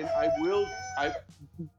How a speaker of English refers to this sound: once your rooster calms down